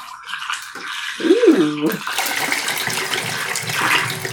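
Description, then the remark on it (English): Film developer pours and splashes out of a developing tank into a sink, starting with a gurgling glug and then settling into a steady rushing stream of liquid. “And let's pour out now.”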